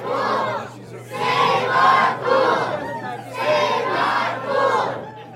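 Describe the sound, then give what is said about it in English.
A small group of children and adults chants in unison before a crowd of about 75 at a Wednesday night city meeting in a cafeteria, demanding officials stop closing the nearly 90-year-old Malvern Hills Park Pool; loud rhythmic surges of voices rise and fall roughly once a second, with a steady low hum underneath. “Then, the chanting began.”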